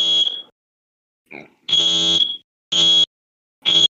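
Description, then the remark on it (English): A loud, shrill fire alarm beeps in sharp bursts, several harsh tones sounding in an uneven rhythm with short silences between them, piercing with no voices. “Damn, that alarm is annoying. I wonder if I can cover it up.”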